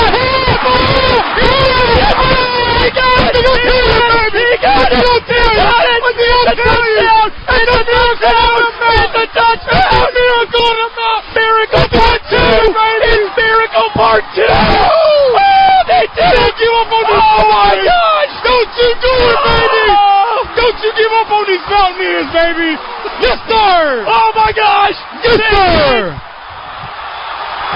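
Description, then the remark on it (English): A stadium crowd roars continuously as Appalachian State fans storm the field in Boone after a Hail Mary win over Troy, 32 to 28, with loud overlapping shouts, whoops and cheering that stay intense for almost half a minute before easing slightly at the end. “And they storm the field.”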